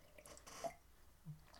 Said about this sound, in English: I'm going to get another sip of this coffee and we'll go on.